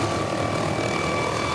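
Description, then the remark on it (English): A Honolulu Fire Department rescue helicopter drones steadily overhead during an afternoon air rescue of a hiker at the Haiku Stairs, its loud, continuous engine and rotor noise holding at an even level throughout with no voices. “it costs about $2,500 an hour to fly its chopper, and the typical airlift takes 2 hours”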